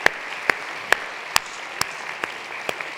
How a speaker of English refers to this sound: Let's put our hands together and welcome our first-time guests.